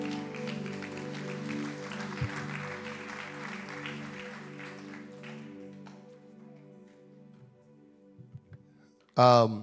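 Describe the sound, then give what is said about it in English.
A church audience claps their hands unto the Lord in a dense, steady patter over sustained organ chords, the clapping thinning out and fading after a few seconds while the organ lingers, then a voice breaks in at the end. “All right, clap your hands unto the Lord if you love him.”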